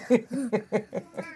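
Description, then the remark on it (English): A senior cat named Roger, also called Cheese, gives a quick run of about six short, clipped meows in a steady rhythm, moderately loud, with no talking over it. “Oh, hey, that is our senior kitty.”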